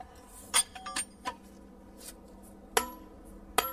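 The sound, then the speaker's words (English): A hammer taps on a tapered metal plug and feathers set in a stone block to split it by delving, giving about five sharp, ringing clinks at uneven intervals, each leaving a bright metallic tone that fades quickly. No one speaks. “Feathers and a plug that's tapered. It applies pressure and it splits.”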